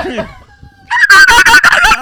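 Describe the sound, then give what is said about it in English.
A rooster-crowing alarm sound: a thin rising lead-in followed by a loud, harsh, strained crow that holds for about a second, with no voices. “That dog must have been losing his shit like that alarm going off.”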